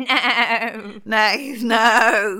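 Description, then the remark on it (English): A person imitates the bleat of a live goat like those given to contestants on the American game show Let's Make a Deal, giving two loud, quavering bleats with a shaky, wobbling pitch, separated by a brief pause. “But they started giving contestants a goat, a live goat.”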